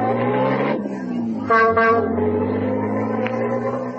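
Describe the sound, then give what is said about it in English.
The engine of an ancient tourist taxi drones steadily and low as it moves slowly through streets thronged with children and donkeys on the way to the Taj Mahal. A horn gives two short, bright honks in the middle. No one talks. “So I hailed one of the ancient and unlikely taxis that catered to tourists.”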